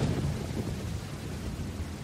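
A steady, loud rumble of stormy weather, with gusting wind and a deep low roar that continues for the whole moment, like a raging thunderstorm. No one speaks.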